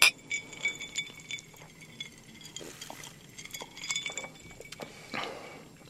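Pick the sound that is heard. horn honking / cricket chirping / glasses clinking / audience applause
glasses clinking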